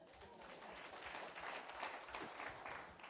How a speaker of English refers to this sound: Yeah, please applaud yourself.